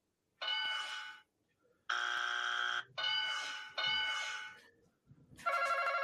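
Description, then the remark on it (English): A Family Feud game show buzzer button sounds five times in a row, each a loud, harsh, harmonic blast lasting under a second with short gaps, the last one higher and brighter. No one speaks. “So I was hoping that we could use it to link all together to see who buzzed in first.”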